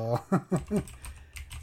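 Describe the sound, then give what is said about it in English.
Computer keyboard typing, a quick run of crisp key clicks in short irregular bursts, partly overlapped by a brief murmur of voice near the start. “I also believe, sorry for the typing, people.”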